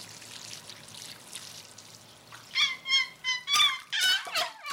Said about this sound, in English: Those basils look thirsty. Watering the plants, about another 6 gallons.